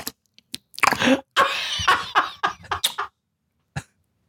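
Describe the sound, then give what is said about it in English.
Wet throat and mouth noises from a person with a very dry mouth: a quick run of gulps and dry smacking sounds, some short and clipped, one longer strained stretch, then a final isolated gulp after a pause. “Why are you gulping?”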